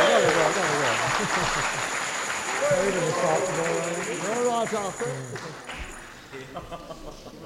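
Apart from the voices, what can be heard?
audience clapping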